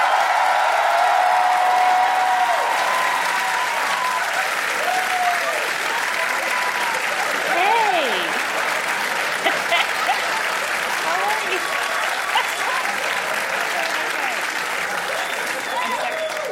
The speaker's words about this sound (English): Thank you guys. Thanks. I've pimped you into an unnecessary applause.